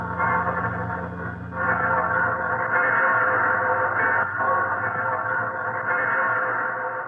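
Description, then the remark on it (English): Many church bells across Paris ring together in August 1944, as French troops enter the city, in a dense, overlapping wash of tolling tones from several churches. The sound is steady and reverberant, heard through a muffled, narrow-band old recording with no voices. “And now all the church bells in the city are beginning. I can hear 3 or 4 more churches, and I'll let you hear them.”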